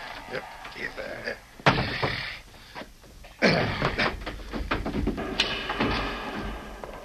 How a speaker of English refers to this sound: You lift the trap door.